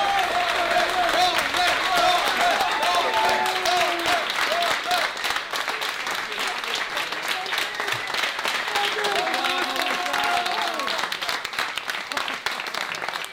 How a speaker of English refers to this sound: Everyone's backstage clapping. Everyone.